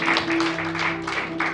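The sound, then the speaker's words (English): An audience claps together as a hand clap of praise to Jesus, a steady, rhythmic pulse, dense and fairly loud, while a sustained low musical tone hums underneath throughout. “We'll give Jesus a hand clap of praise.”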